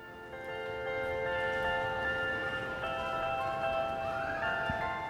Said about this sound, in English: What do the sound of bells mean to you? A song?